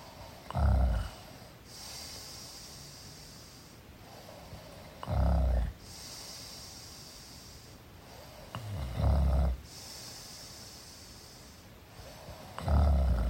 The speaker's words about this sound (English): He was snoring and I woke up in the night and was listening to him and I thought, I'm gonna record that. And so I did.